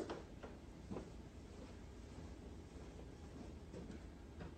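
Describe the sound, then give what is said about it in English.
Doors being shut in an office by a man closing them all up: a handful of muffled clunks at irregular intervals over a steady low rumble, with no one talking. “His dad's like closing up all the doors in the office.”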